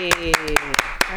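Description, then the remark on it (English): A short burst of clapping, about seven sharp claps in an uneven rhythm, fairly loud, with voices carrying on underneath, applauding a woman who walked across the stage today. “Round of applause.”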